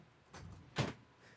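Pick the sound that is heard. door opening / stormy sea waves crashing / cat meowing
door opening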